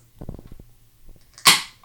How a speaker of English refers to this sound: What was that? Was that a deer? Oh, a fallow deer.